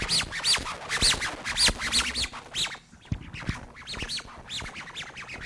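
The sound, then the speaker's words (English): A faulty microphone squawks and chirps in quick, rising-and-falling bursts that sound like birds calling, repeating almost nonstop for several seconds during audience questions after a talk, with no one speaking. “There's another microphone coming because it's kind of a Hitchcock film with birds.”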